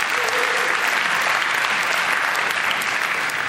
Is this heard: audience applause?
yes